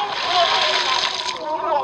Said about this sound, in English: He fell into the water, and Jesus had to pull him out.